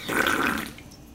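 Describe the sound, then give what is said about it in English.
A single wet slurp of a mixed drink made with 99 Bananas, sucked from a can, an airy, gurgly burst lasting about half a second before trailing off into quiet. No one speaks. “I poured it directly into the can. Slurp, slurp.”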